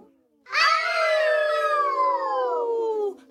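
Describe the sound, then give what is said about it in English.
A person imitates a hyena with one long, loud howl that starts abruptly, holds steady for nearly three seconds, then slides gradually downward in pitch before cutting off. “And the hyena said, "I know, we can howl. We can howl really, really loud.”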